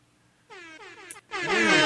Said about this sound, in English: I was going to say, I think Virtual DJ has one. You probably do Virtual DJ horn and you'd get it. Best air horn sound effect. Ever.